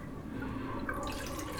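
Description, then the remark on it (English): Film developer pours steadily into a film developing tank, a continuous stream of sloshing, trickling liquid that brightens slightly partway through as the container fills, with no voices. “Okay, let's start the timers and pour in the developer.”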